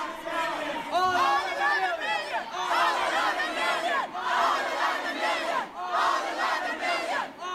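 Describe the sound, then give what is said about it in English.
A large protest crowd, heard through a cell phone feed, chants in unison, loud rhythmic bursts of many voices rising and falling roughly every one and a half seconds, the words blurred together. “Instead of misheard lyrics, we should do misheard protest chants.”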